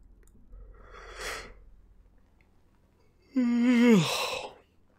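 A person yawns: a long breathy inhale, a pause, then a loud voiced groan that slides downward in pitch before trailing off into breath. No speech.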